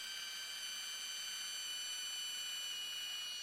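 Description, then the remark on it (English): A cordless drill running on a weak battery that is low on charge whines steadily with a thin, high-pitched, buzzing motor tone that holds constant and fairly quiet for the whole stretch, with no voices. “What's going on with my drill? My battery's struggling, right?”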